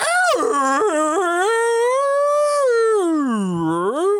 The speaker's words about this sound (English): I'm here on the open seas and I'm just so happy listening to the whales.